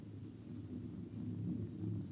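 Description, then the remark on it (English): A steady, deep rumble of a herd of animals stampeding this way and raising dust, a continuous low roar that swells slightly louder partway through, with no voices. “A herd of critters. Look, you see the dust? They're coming this way in a stampede.”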